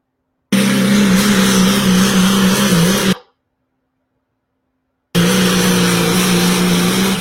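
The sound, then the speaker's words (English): A loud diesel pulling truck engine roars in two long, steady bursts of revving, broken by an abrupt stretch of silence between them; diesel truck pullers with the Outlaws. “To see diesel truck pullers back with the Outlaws. That video is on the Facebook page.”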